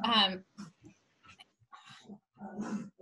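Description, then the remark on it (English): Dogs whimper and yip in a scuffle, starting with a loud, high whine followed by several shorter, fainter yips and whines scattered across the few seconds. “They're like fighting right can now. Can you hear them?”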